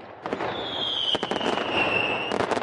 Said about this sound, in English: Has been at times the UK's largest bonfire and fireworks display, believed to date back to the 1880s. Around 20,000 people gather around the village green. Over 4 tons of fireworks typically light up the sky.